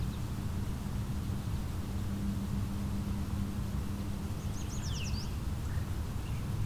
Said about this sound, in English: Very clear song. Bird's right in front of me somewhere. I think a bright yellow bird would be obvious.